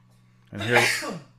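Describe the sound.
A single sneeze in the background at a show with a live audience bursts out abruptly, a breathy, voiced blast lasting under a second that trails off in a falling tone, over a low steady electrical hum.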